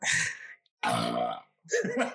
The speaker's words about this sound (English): Did you guys hear that, dude? That was good. That was good. And the burp to follow.